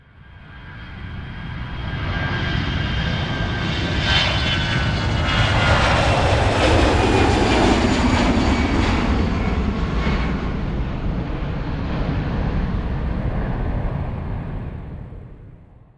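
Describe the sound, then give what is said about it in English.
A loud, sustained jet engine roar builds up, holds steady with a whining high-pitched tone over a deep rumble, then slowly fades: a JetBlue airliner preparing for takeoff on the runway at JFK airport. “In this episode, we go to JFK, where JetBlue Flight 355 is preparing for takeoff when the plane catches fire on the runway.”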